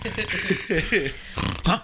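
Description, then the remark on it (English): A voice imitates Joey Ramone of the Ramones snoring, with a short run of loud, throaty snorts and grunts, rising and falling unevenly over a couple of seconds, ending in a final snort. “While we all had to share a one-loft apartment, Joey snores, by the way. Snores in 2-minute increments.”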